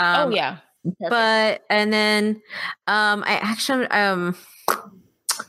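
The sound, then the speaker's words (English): A voice makes a series of loud, buzzy fart-like noises with the mouth, several bursts in a row with short gaps between them, imitating a fart. “I don't know why I made a fart noise.”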